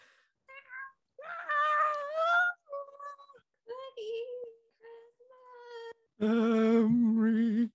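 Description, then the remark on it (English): Voices imitate a class of children working on their song and singing badly, a string of warbling, cat-like wails and yowls in uneven bursts, ending in a loud, strained, nasal howl held for over a second. “The class is still working on their song very badly. Like, sounds like cat singing.”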